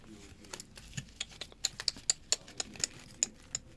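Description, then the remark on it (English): A deck of cards being shuffled by hand, with a loose, irregular run of dry papery clicks and snaps, quiet, and no voices. “This is making a mess every time I shuffle, so I'm just gonna stop shuffling.”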